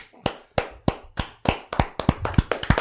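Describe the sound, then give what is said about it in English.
The hosts clap together in a short, uneven burst of about a dozen sharp claps that quicken toward the end, with no talking over them. “That applause is for Do Combo Origin, who, while not 100% accurate, got so close that I have to step in and say, yeah, man, you got it.”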